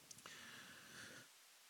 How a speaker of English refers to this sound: Excuse me. I'm not sick. It's just a little cough.